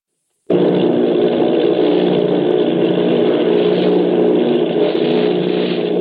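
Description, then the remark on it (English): In Orson Welles' radio production of War of the Worlds, a loud, steady roar of the engines of eight army bomber planes off Bayonne, New Jersey starts abruptly and holds a constant droning hum with a low rumbling throb, no voices over it. “Army bombing plane V-843 off Bayonne, New Jersey. Lieutenant Bolt commanding 8 bombers, reporting to Commander Fairfax Langham Field.”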